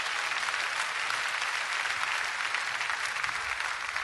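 audience applause

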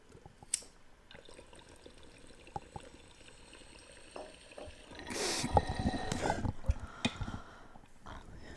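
water bubbling

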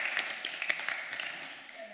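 round of applause

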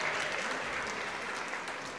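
audience applauding

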